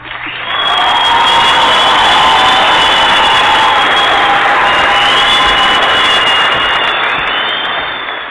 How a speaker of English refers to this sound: Oh, that was a thunderous applause right there. I kind of like that one. It was kind of awesome.